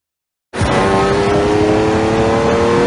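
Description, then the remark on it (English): A loud race car engine roars in abruptly after half a second of silence and keeps revving with a steady, high-pitched whine, continuous with no talking. “Why would they start with the race car?”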